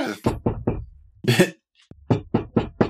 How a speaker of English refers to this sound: Dilly, there is a knock on your door.